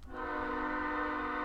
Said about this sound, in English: That damn train. These trains can go crazy at night.